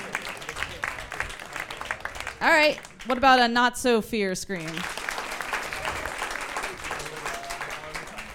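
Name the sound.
audience clapping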